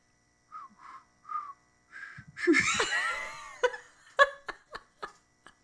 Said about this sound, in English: If I was better at whistling, I would whistle it to you right now. I'm a terrible whistler in camp. I want you to try.